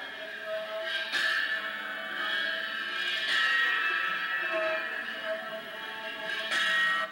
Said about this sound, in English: And that gong is suspended by a rope going to the edges here, and he hits it in the center of the gong, so it vibrates in the center.